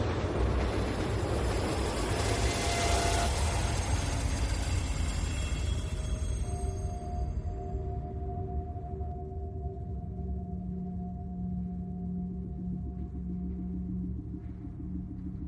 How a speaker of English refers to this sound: as loud as the baby now, as deafening as the screech of the train's brakes as it barreled into the station.